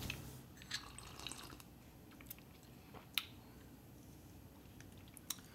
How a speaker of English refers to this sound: All right, I'm going to have a sip of this.